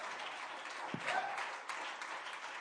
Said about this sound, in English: I appreciate you clapping your hands and rejoicing.